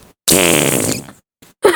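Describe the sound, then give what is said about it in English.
A loud, wet, sputtering fart noise blown with the mouth, lasting under a second, followed by a brief breathy trailing sound. “There needs to be a fart sound. I'll do one.”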